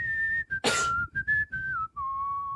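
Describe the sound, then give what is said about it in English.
Someone whistles a short, wavering tune, the clear pure tone sliding between a few sustained notes with brief gaps and a quick breathy burst in the middle. “Jedi just don't like whistling.”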